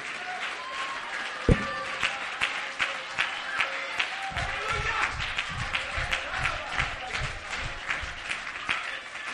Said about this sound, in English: Clap your hands one more time in a crazy way, and let's praise God together with our voices.